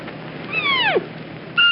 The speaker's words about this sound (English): And now I'm wondering what a deer sounds like. So.